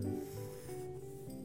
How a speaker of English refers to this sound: I'm gonna take my pencil and I'm gonna make some quiet lines. What lines would you make, or shapes, or patterns that feel quiet? I'm drawing my pencil across the page so lightly. Can you hear it?